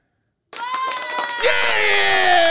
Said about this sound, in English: You got a bunch of children clapping. Yo, I love how his sound effects are like layups.